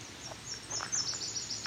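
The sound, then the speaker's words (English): A Nashville warbler's song trill: a quick run of thin, high-pitched notes, faint over a soft background hiss, with no one speaking. “Nashville warbler”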